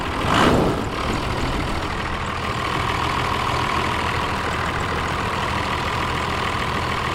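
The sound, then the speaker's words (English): A Cummins 12-valve diesel engine in a truck idles steadily, a loud, continuous low rumble with a faint clattery texture, after a brief louder surge at the start. No voices. “All right, so play the clip of the 12 valve.”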